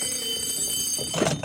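A telephone rings in Denver as a young real estate appraiser is just leaving for the airport, with a steady, shrill, high-pitched bell tone that holds for the whole moment, then a brief clattering rustle near the end as it cuts off.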